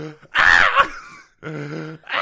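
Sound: imitated heavy breathing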